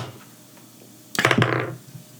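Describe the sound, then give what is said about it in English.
Dice are rolled: a sudden burst of rattling clicks and small hard knocks that tumbles for about half a second, then dies away into quiet. “I don't want to cannon roll that, but I'll roll for how hungry I am.”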